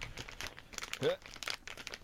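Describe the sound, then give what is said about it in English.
Steady crinkling and crackling of tough plastic packaging being worked open by hand, with irregular sharp crunches throughout and a brief murmured vocal sound in the middle. “Okay, apparently I need scissors because it's wrapped in super titanium plastic.”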